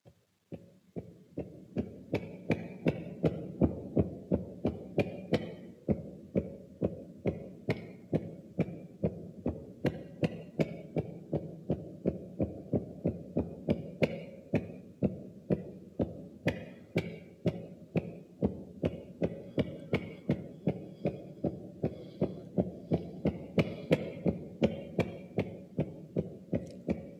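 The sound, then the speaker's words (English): A recording of a human heartbeat, sped up a little to show its irregularity, thumps in a fast, continuous stream of muffled low beats, two or three per second, holding a steady level throughout with no voices. “And I have a recording here where the heartbeat is kind of sped up a little bit so you can see how irregular it actually is.”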